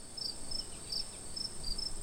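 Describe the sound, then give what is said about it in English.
Crickets chirp in a steady, evenly spaced rhythm, short high-pitched trills repeating about twice a second over a quiet night-like hush, with no voices. “Complete crickets.”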